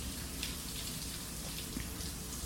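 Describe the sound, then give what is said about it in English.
A steady, unbroken hiss of running water pours from a cold shower, with faint droplet patter on top and no voices, holding an even level throughout. “you don't have to jump in the cold shower with me.”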